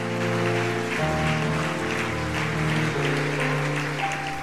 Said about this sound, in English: Y'all give the Lord a good hand clap. Amen.